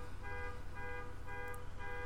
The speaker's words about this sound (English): Fucking car alarm goes off out my window.